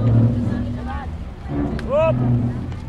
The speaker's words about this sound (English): Much of the recycling done in the Philippines happens at massive dump sites like this one on the outskirts of Manila. Here, trucks roll in every few minutes to unload garbage from Metro Manila's 12 million residents.